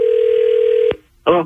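A steady, buzzy telephone ringback tone on an outgoing call from radio station B98.5 sounds for almost a second over a phone line, then cuts off with a click as the call is picked up, followed by a brief spoken answer.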